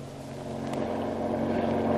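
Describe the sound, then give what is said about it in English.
A steady, loud engine of a speedy patrol boat drones with a low rumbling hum and faint wind noise, growing slightly louder over two seconds with no voices. “The authorities put at his disposal a speedy patrol boat, and the hunt for the submarine is on.”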